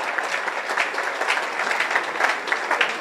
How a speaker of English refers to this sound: Emeritus Lay Pastors Board. Wow. Emeritus. Wow. Oh, let's rise and clap for them.